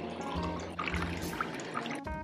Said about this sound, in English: I feel very thirsty every morning. I always pour myself a big jar of water, and I also like to put some lemon because it's refreshing and good for health.